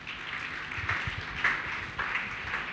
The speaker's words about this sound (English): If you agree with me, clap your hand for Jesus.